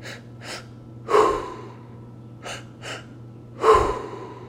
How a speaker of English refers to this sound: Belly lifts, chest lifts, exhale, release. Finding your own rhythm, finding your own pace. Beginning to settle in to a cyclical cycle of breathing, a spinning wheel with the breath.